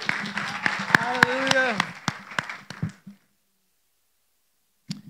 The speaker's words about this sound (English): So, round of applause for our amazing Pastor